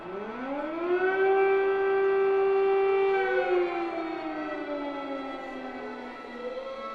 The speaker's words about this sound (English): The dawn chorus that no one wants to hear. Air raid sirens in Kyiv, signalling that the full-scale invasion of a European country in the year 2022 was well underway.